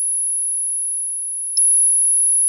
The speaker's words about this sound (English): As the cold metal touched her bare flesh, she looked up into the disconnected eyes of her friend, and then an ear-splitting chime of a flat line pierced through the air.